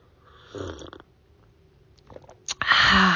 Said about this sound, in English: You know that first sip of coffee? We're going to do it together. Or if you drink tea, that's fine too. But ready? Here we go.